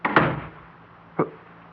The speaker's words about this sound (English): How did that door close? I closed it. But you never moved. You just sat there and it closed behind me and...